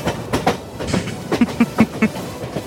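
A train rolls along the tracks, its wheels knocking out a steady, rhythmic clatter of sharp beats over a broad rumbling hiss, fairly loud, with no voices.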